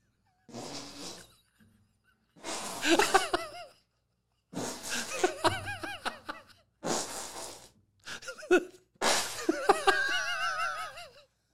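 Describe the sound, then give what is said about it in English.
A run of hand-made armpit fart noises, made with a hand under a shirt, in five or six loud, sputtering bursts separated by short pauses, with laughter breaking out over and between them. “And I've never heard anyone make better fart noises doing this, but you just walked in like, do it.”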